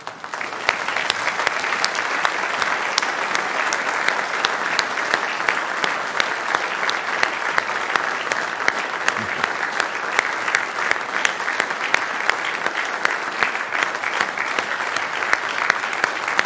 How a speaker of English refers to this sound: And so this morning, I want to wish mothers a happy Mother's Day. And for those that aren't mothers and will be potential mothers, God bless you too. And I think that the daddies and the children can applaud their mothers this morning.